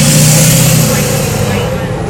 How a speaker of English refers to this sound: Loud ass truck.